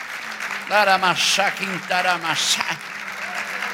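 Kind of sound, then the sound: crowd, audience applauding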